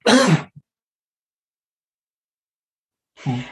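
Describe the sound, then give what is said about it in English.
A harsh cough with throat clearing, then a few seconds of silence before a second rough, throaty burst. No speech is heard. “I'm going to cough.”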